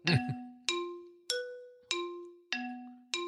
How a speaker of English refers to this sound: Have my hand over the bell.